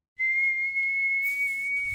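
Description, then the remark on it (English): A person whistles a single sustained note, holding one steady, high pitch for nearly two seconds, loud, with faint breathy noise and background hum beneath it, like an old ship's call. “I can't even whistle now.”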